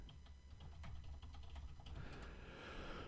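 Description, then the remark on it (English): Rapid, uneven keyboard typing with sharp clicking keystrokes for about two seconds, then the clicks stop and a broad hiss fills the rest. “Where's my home keys?”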